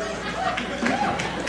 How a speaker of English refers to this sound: Hang on. You don't know what you're clapping about yet, okay?